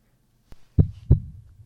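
heartbeat sound effect

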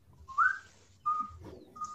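person whistling

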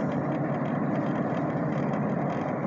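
car engine running

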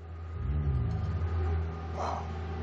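car engine revving

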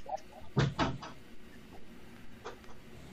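door being closed

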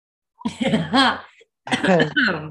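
cough

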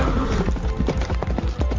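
horse hooves clip-clopping

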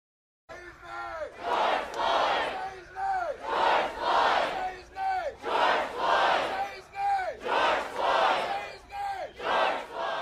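crowd chanting

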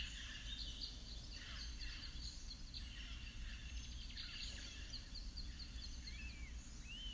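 birds singing and chirping

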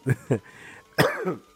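coughing

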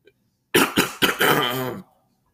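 coughing and throat clearing

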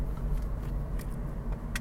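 car interior

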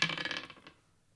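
dice rolling

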